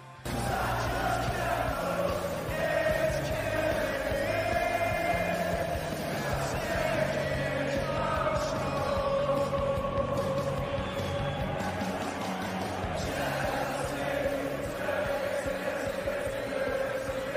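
A large arena crowd sings a rock anthem together, hundreds of voices holding a loud, steady, slightly ragged melody with cheering and shouts mixed in throughout.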